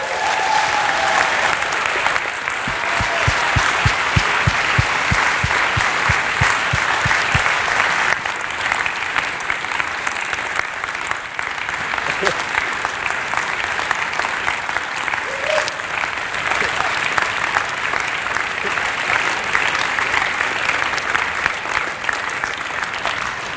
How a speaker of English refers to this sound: Why don't we give them a massive round of applause?